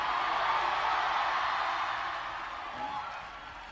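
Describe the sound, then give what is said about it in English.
A large crowd claps and shouts hallelujah together in a dense, continuous roar of applause and cheering that holds steady for a few seconds, then eases slightly toward the end. “Clap your hands and scream hallelujah.”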